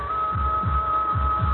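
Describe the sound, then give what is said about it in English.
A heartbeat thuds in deep, muffled double pulses, two lub-dub beats in under two seconds, over a steady high-pitched hum with no voices. “That's not thunder. My own heart. Heart beating.”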